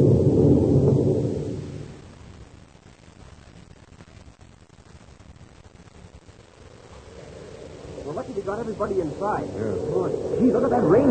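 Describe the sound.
A heavy storm with a deep rumble of thunder at the start and steady hissing rain throughout, while voices begin talking over the downpour near the end.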